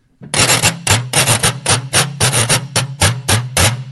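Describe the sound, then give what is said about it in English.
A metal whisk rasps across a spiral washboard in a quick, steady rhythm of about a dozen loud, bright scraping strokes, each with a faint ringing hum beneath it. No one speaks. “This is the spiral crimp with the whisk.”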